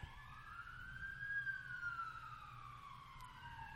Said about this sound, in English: Oh, it's a fire truck. Yeah, it's got to put out these hot flames.